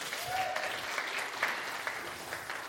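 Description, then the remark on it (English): Steady applause from a church audience fills the room, a dense wash of many hands clapping at moderate volume, with faint voices mixed in beneath it. “Another round of applause for Philip right there.”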